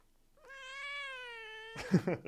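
A single drawn-out cat meow, steady and clear, followed by a brief burst of noisy rustling at the end.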